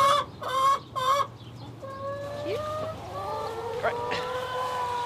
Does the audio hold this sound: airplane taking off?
no